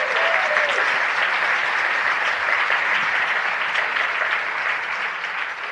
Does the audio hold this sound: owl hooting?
no